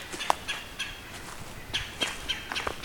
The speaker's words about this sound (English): White breast nuthatch here, and this red-bellied woodpecker.